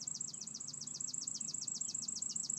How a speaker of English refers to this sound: And you see, you hear how happy the bird is.